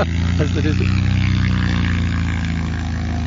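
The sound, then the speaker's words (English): A light aircraft, a 182, taxis past with its piston engine droning steadily, a low, even propeller hum that holds throughout, with a brief murmur of voice early on. “Lovely distinctive sound off that airplane too.”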